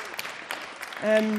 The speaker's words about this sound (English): a big round of applause, everybody.